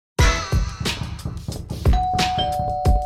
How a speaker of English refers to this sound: Another ring of the doorbell. Let's see who's here.